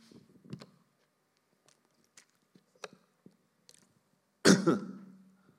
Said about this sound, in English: excuse me, I'm just clearing my throat and getting some water through.